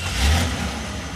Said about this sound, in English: First, you hear the car.